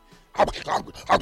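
A person imitates a dog barking with three rough, hoarse barks in quick succession, loud, after a brief quiet moment.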